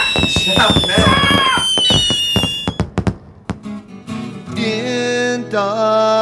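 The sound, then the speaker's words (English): A rapid series of sharp popping cracks from indoor fireworks being set off, layered over a high whistling hiss, then gives way to a humming, tonal drone; voices can be heard mixed in. “Fireworks can still burn your fingers. Indoor fireworks, we swore were safe as hazards.”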